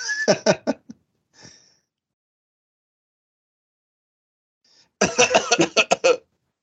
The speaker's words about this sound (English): It sounds like you've got consumption. Yes, my fake sounding cough is consumption.